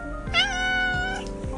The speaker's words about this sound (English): My cat, Rue, says hello. Say hello to everybody, Rue.